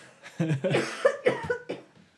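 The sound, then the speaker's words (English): A fit of coughing: several harsh coughs in quick succession, roughly five bursts over two seconds, loud and unaccompanied by speech. “Oh, hold on. I have to cough for a second.”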